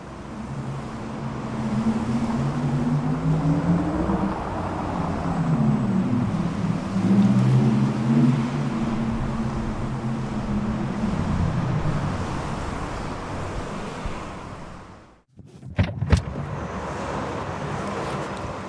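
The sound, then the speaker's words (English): An electric car's artificial sports driving sound hums and swells in pitch over steady road noise for about fifteen seconds, then cuts out, followed by a few sharp clicks. “So what I have on is the electric sports sound here, which I can select.”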